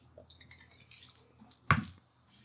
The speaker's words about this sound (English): Yeah, for our listeners at home, I got us some fancy double dice that have a little die inside a plastic thing. Makes a really good noise on mic. They're very fun.